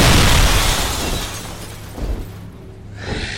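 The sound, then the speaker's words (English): A loud crash of breaking stone, glass and wood bursts out at once, then fades into scattered clatter, with two smaller crunches of falling debris following. No one speaks. “The sound of stone, glass, and wood breaking sundered the moment, and before Wesley could turn to see the source of the noise”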